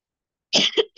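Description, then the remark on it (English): A fairly loud cough after a moment of silence: a harsh burst followed by a second hacking pulse, with the start of another cough cut off at the end. “I'm about to cough.”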